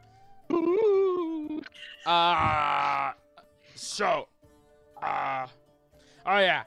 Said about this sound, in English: I heard, hear that? Sounds like snoring. Oh yeah, there's definitely feedback.